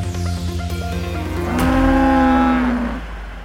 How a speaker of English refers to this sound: So I could have a little gif of me sort of riding around, you know, abs being splashed with water and the cow whale kind of underneath me, sort of moo bellowing and spuming with delight.